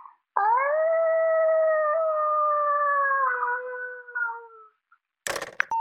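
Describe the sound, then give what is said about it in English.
A person imitates a wolf howl: one long, steady, fairly loud howl lasting about four seconds that slowly sinks in pitch, followed after a pause by a brief noisy clatter. “Here's my wolf impression.”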